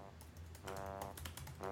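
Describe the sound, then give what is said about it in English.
Rapid clicking of keys on a computer keyboard, a quick run of crisp taps with a faint hum underneath. “Yeah, you guys, I know how to type fast.”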